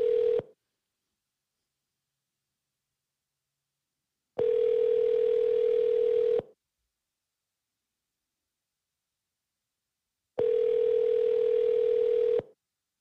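A telephone ringback tone sounds on an outgoing call placed by the host of the Midnight Radio show to a listener, about two-second steady bursts repeating every six seconds with silence between, clear and fairly loud, no voices.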